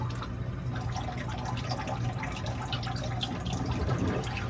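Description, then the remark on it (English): Steady trickling and splashing of water pouring into an aquarium from a top-off line, a continuous flow with faint dripping textures and a low hum underneath, no voices. “Yep, there's water.”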